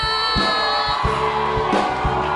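A crowd cheers and applauds to encourage a woman from the Greater Love Gospel Choir coming up to give a testimony, in a steady, loud wash of noise, with whoops rising over sustained music and a regular low beat underneath.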